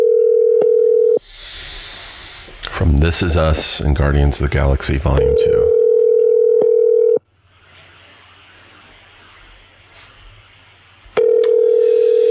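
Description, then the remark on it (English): A steady telephone dial tone, then a brief burst of speech mixed with dialing beeps, the tone returning, a hushed line pause, and the tone again as the call goes out. “Let's do a phone call.”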